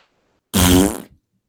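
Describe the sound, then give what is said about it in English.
A single loud fart noise blown with the mouth, a buzzy, sputtering raspberry lasting about half a second, standing alone in silence with no talking around it. “Funny thing about that little fart sound I made.”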